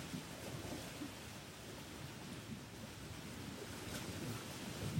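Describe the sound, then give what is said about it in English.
Steady, broad wash of waves of the lake Gitche-Gami rolling ashore in the morning, with a constant wind rush over it; no voices, a continuous low roar that swells slightly toward the end. “Invite you to feel into the song of Gitche-Gami this morning.”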